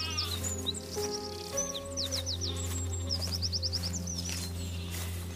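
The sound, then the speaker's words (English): On a bright sunny day, birds chirp in quick repeated trills over a steady low rush of wind, while nearby sheep bleat in drawn-out calls; an open outdoor scene with no one talking. “And as we arrived, we could hear the wind, the nearby sheep, and the birds chirping.”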